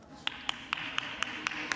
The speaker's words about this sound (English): That one lone clap was from Lauren Boebert of Colorado.